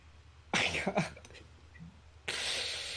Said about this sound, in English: And I want you to focus on your throat, okay? I want you to contract your throat and slow down the rate of your breathing and make that noise.